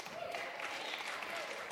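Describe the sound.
An audience claps steadily, a dense, even wash of many hands at moderate loudness, with a faint murmur of voices mixed in, lasting under two seconds.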